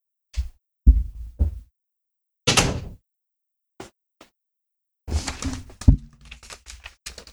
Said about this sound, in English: Sorry. Was that the dog? No, it was the cat. Okay. I have a rack of clothes that are drying, and she was attacking the bras.